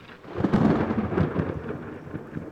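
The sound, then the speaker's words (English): A loud crack of thunder breaks and rolls into a deep, sustained rumble, with steady rain hissing underneath and no voices. “The crack of thunder.”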